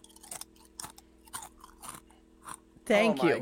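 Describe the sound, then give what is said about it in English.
Loud chewing of food right at the microphone: a run of crunchy, wet bites at an uneven rhythm, followed by a brief burst of voice at the end. “Thank you for chewing in our ears.”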